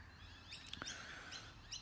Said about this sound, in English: God, I love listening to these birds. There's a commotion off in the distance, which is... that's a fox. But yeah, but I can hear the birds, but the birds are telling me there's a fox over there.